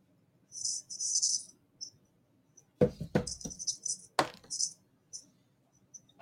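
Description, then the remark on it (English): Dice are rolled across a table during a tabletop game, landing on a 5: a shaking jingle, then several sharp, loud clacks as they tumble and settle, with a faint murmur of voices underneath. “I rolled a 5.”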